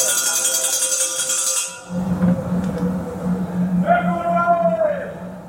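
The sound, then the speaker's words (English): Noisy prison wing ambience at HMP Brixton in London, recorded on its wings by the Prison Radio Association: a constant loud din of overlapping, indistinct voices, metallic ringing and clanking tones, and a steady low hum that sets in partway through. “Imagine the inside of a prison. Iron bars, steel doors, concrete walls, and unrelenting noise.”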